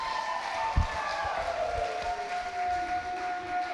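An audience at a Village Youth gathering claps to welcome a guest speaker, in a steady, even wash of applause at moderate volume, with a thin sustained tone hanging over it and a couple of low thumps early on. No one speaks.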